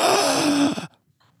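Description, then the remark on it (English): A single strained, breathy gasp attempted just after already breathing in, with a pained, groan-like voiced edge, loud, lasting under a second before cutting off into near silence. “I tried to take a gasp, but I had already just breathed in, and that hurt really bad.”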